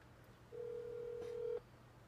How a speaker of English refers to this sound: You calling him? Okay, it's ringing. I hear it ringing. Hold it up to the mic. Who are you calling? He's not even answering.